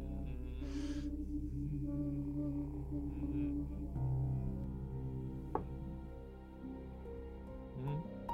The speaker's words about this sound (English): Oh my God, that was a knock.